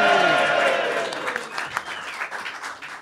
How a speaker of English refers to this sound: So a round of applause for our ultra listener,